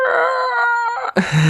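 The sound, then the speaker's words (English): A man lets out one long, strained scream that holds a steady, piercing pitch for about a second, then breaks off abruptly into a short burst of rough noise; it is the Howie scream sound effect. “And have a Howie scream.”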